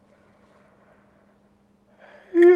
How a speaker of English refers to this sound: And in this pose, we're going to practice something called the vagus nerve yawn. So you're going to inhale.